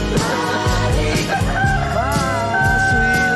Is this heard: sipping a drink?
no